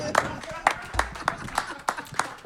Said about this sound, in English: That's correct, yay! Everyone! Hearty, hearty clap, hearty clap!